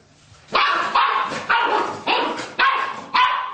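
A puppy barks six times in a steady, quick rhythm, each yap sharp, with no talking around it.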